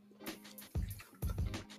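Someone takes a drink of water, with two muffled gulps about half a second apart and soft liquid and breathing noises between them. No one speaks.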